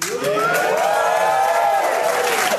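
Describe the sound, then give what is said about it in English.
A crowd cheers and whoops loudly, a dense wash of voices with rising and falling shouts, steady throughout with a faint patter of clapping underneath. “The ones who aren't clapping are the highest, too.”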